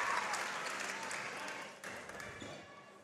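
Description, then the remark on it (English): A large arena crowd at the Key Center applauds and cheers a made free throw at a basketball game, a dense, steady wash of clapping that dips briefly then swells again, with a commentator's voice faintly underneath. “Great crowd here as well at the Key Center.”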